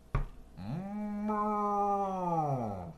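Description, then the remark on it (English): A person imitates a cow mooing: one long, low, droning moo held for over two seconds and dipping slightly in pitch at the end, preceded by a brief click. “you were just giving us a great cow impression. Can you do that one more time just for the listeners at home?”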